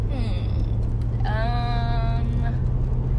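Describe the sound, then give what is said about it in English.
Steady low engine rumble from inside a moving car being driven, with a brief whining tone as another car passes, then fades back into the constant road drone. “If you just heard a car passing us, that is because, once again, I am driving.”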